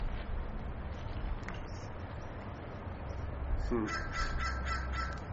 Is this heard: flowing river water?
no